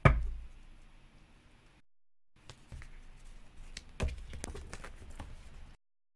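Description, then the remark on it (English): Large cards being shuffled three times: a sharp initial slap, then a pause, followed by a steady run of soft riffling and papery flicks with a few crisp snaps, moderately loud with no voices. “And then I'm going to really shuffle them.”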